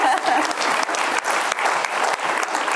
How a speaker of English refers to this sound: But in 2012, we saw over 1,600 families go debt-free throughout the UK. That's over six every working day. Hallelujah. And we've seen, yeah, it's worth a clap.